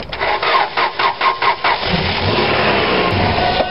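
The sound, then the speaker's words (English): A car engine cranks over in a loud, rhythmic series of about seven chugging pulses, then gives way to a steady rough whirring without catching and running. No one speaks. “Is it going to start? I don't know. Let's try it again.”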